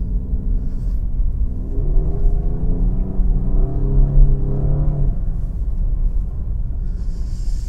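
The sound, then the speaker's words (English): A small car on snow tires drives up a hill in second gear on fresh snow, its engine droning steadily, pitch climbing and straining as it pulls, with a deep constant rumble of road and cabin noise throughout. “Okay, let's go up the hill. Second gear.”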